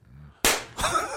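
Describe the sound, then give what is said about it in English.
Two loud, sharp hand claps land slowly, spaced a beat apart, each with a brief ringing tail, after a moment of faint low murmur. “The slow clap. You're bringing the slow clap in.”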